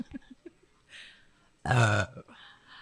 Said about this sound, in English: Sorry. It smells like vomit. Just burp downward. Stop pointing it at me. I feel attacked by your burp.